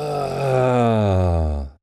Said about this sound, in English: I was like, when I yawn pretty loud. And so I'm laying down on the couch because I'm tired because he kept me up all night. Kept us up all night. So I'm yawning.